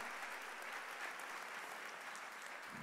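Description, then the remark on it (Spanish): An audience at a religious service applauds steadily for the Lord, a dense, even wash of many hands clapping at constant loudness for about three seconds, with no voices rising above it. “Fuerte el aplauso, por favor, para el Señor en la vida de nuestra hermana.”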